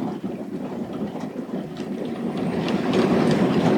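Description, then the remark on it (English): Steady rain falls as a dense, crackling hiss full of tiny patters, growing slightly heavier toward the end, with no voices over it. “Gosh, listen to that rain.”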